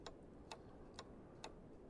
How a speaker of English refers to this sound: It's an old cuckoo clock from Germany. It was brought over by my family generations ago.